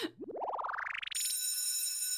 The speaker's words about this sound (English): All right, and that is our bell, which means we're almost out of time.